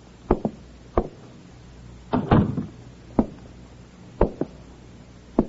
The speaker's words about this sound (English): He walks down the hall to the door of apartment number 7. He knocks. Receiving no answer, he tries the door, finds it open, and enters.